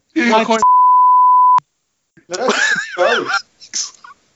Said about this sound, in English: I think it might have been Dr. Because he's been up to all sorts of shit, I'm told. definitely beeping his name out of this,